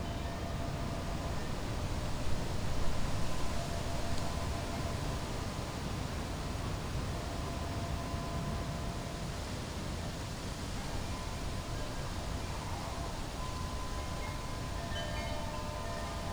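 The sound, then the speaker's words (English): A steady, broad rushing hiss of wind through trees at night, with a faint rustle of leaves. It stays fairly even throughout, swelling slightly early on, and no one speaks. “Invisible waves of air, rushing and hissing through the trees, their leaves flapping and flagging and finally falling to the floor.”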